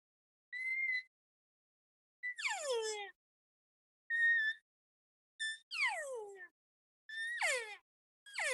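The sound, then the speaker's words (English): A person imitates elk cow calls by voice, holding a high note, then relaxing the tongue and dropping the jaw: short steady high whistled notes, each followed by a sliding, descending mew. About seven sounds in alternating pairs, separated by silence. “That's how you make a cow call.”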